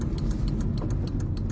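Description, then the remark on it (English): A car's left turn signal, with its front light out, clicks in a rapid, steady rhythm that is too loud, a quick run of sharp ticks over the low rumble of an idling engine inside the cabin. “My left turn signal is out on the front of my car, so it beeps way too loud. Or blinks.”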